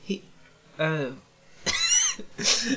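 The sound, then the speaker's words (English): A cat meows, two or three drawn-out, rising and falling cries in quick succession, fairly loud, with short pauses between them and no talking. “My cat's tail just like caught around my microphone wire and pulled it off of my desk.”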